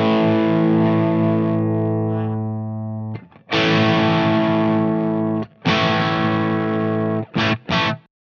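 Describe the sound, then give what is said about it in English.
An electric guitar through a lightly driven overdrive pedal set to LP (low peak) mode with the drive at about 8 to 9 o'clock: a sustained chord rings out and decays, followed by several more strummed chords and two quick stabs at the end, warm and slightly gritty. “So if I roll this all the way back to the drive, so we're in LP mode, so low peak, not HP, HP source. And the drive's on about sort of 8, 9 o'clock.”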